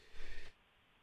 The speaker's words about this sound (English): Excuse me, I sneezed. That's twice.